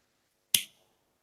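Two sharp, bright clicks from a blowtorch lighter, the first with a brief hissing tail and the second cut off at the end, separated by under a second of silence.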